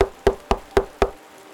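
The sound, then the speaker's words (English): Four firm knocks on the wooden front door of a house with its lights out during Halloween trick-or-treating, in a quick, even rhythm, clear, followed by silence with no voices. “When no one came to answer the door, the kids quickly turned around, ready to dash to the next location.”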